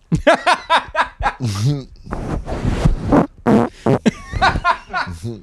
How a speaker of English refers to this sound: I just farted on the mic I got to talk into